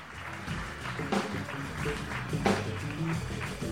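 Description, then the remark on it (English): A show audience claps steadily for several seconds for a singer, a dense, crackling wash of many hands with a few sharper bursts, and faint voices and cheers mixed underneath. “Everybody clap your hands for ….”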